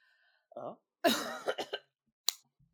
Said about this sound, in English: Now see, ooh, that's what a cough sounds like. Sorry, my coughs don't sound cough-like enough.